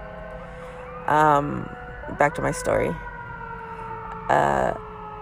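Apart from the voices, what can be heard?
ambulance siren passing by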